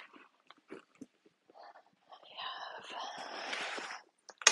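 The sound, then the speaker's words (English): Heavy breathing into the microphone: a few short, airy puffs and soft clicks, then a longer, louder stretch of rough, raspy breaths before a brief burst at the end. “I'm sorry, now you're just hearing a bunch of breathing, and I hate that for you.”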